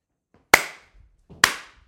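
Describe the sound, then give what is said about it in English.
Two sharp hand claps spaced about a second apart, each a crisp slap with a short ringing tail, with quiet background otherwise. “Who was the first guy to clap?”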